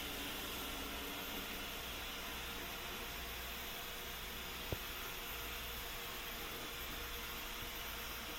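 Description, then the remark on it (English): A DEEBOT robot vacuum cleaner, started through Alexa, runs with a steady, fairly quiet whirring hiss that stays constant throughout, broken only by a single brief click partway through; no one speaks. “As you can tell, it's fairly quiet. It's not terribly loud.”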